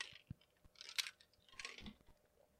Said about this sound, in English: I'm thankful for, I gotta get a sip of water. I'm thankful for water.